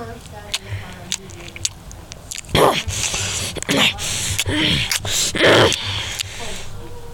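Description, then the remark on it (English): A dog chews and gnaws on the flesh of a bitten human forearm, with irregular wet biting crunches, bursts of growling and snuffling, and brief whimpering yips in between. “The last thing I could hear before passing out was the sound of Focus chewing”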